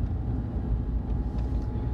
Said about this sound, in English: And I'm actually surprised that my car is still going because I'm straight up on the E.